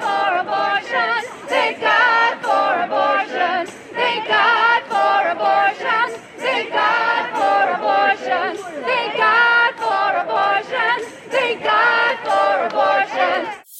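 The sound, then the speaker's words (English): A crowd of demonstrators gathered over the end of Roe sings a hymn-like chant together, loud and sustained, in steady rhythmic phrases with brief dips between lines and no other sounds standing out. “But they showed up anyway, and at one point they began singing a kind of satanic hymn.”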